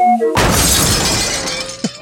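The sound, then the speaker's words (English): A short tone gives way to a loud, sudden crash of a car into a wall and a burst of shattering glass, with debris ringing and tinkling as it fades over about a second and a half. “Just the clown car crashing into a wall once again.”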